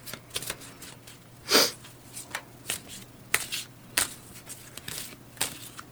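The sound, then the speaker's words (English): Very large playing cards being shuffled, a series of crisp riffling snaps and flutters at irregular intervals, with one louder burst early on, over a faint steady hum. “The cards I'm shuffling.”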